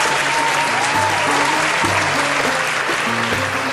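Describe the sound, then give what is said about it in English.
A steady burst of applause from many hands for students who helped raise 400,000 dirhams for Gaza relief efforts, dense and loud throughout, with no voices rising above the clapping. “I'm going to give them a big round of applause.”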